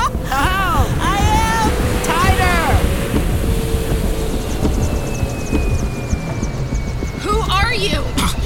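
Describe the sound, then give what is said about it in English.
A jet ski speeds across the water, its engine a steady, loud roar mixed with wind and spray, while voices shout and call out over the noise. “You know, jet skis can tip over.”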